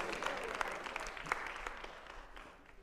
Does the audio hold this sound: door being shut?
no